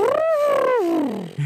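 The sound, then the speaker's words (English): A person's voice imitates an elephant trumpeting: one loud, sustained, wavering call that rises briefly and then slides downward in pitch over about a second before cutting off. “That was an elephant.”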